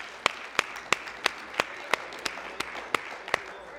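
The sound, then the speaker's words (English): An audience applauds, giving a hand clap to God, a dense wash of many hands clapping with a steady, rhythmic beat of sharper claps standing out roughly three times a second, moderately loud and sustained throughout. “Let's give Him a hand clap one more time if you wouldn't mind, please.”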